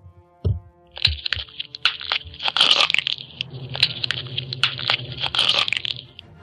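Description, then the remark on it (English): A loud neck-snapping sound effect: a sharp crack followed by several seconds of wet, dense crunching and crackling, with bursts of snapping in an irregular rhythm. No voices. “This is the neck being snapped and crunched and crackled.”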